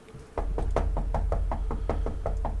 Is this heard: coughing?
no